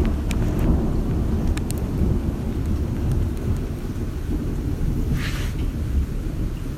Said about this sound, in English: There's that thunder. I was quiet for a minute just to see if y'all could hear it. I hope you can. It's a wonderful sound, folks.